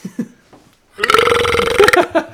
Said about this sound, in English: I think that burp peaked on my side.